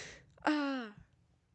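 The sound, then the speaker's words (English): A single yawn: a breathy intake of air swells into a drawn-out, voiced groan that slides downward in pitch and fades, with no talking around it. “We're crying out loud if I don't stop yawning.”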